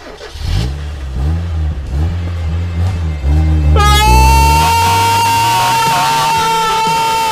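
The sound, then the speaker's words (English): A DeLorean car engine cranks and catches, rumbling unevenly before roaring into loud, sustained revving with a rising whine, without any talking. “Start it up!”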